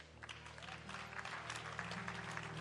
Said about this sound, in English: Yes, let's clap for God. Let's give God a big hand, a big hand, a big hand, a big hand, a big hand.